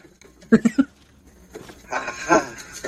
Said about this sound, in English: Sheep trying to break into my house.